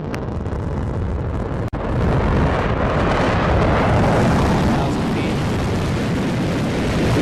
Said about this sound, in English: What you just heard is a rocket from the company Blue Origin, which wants to get tourists into orbit next year.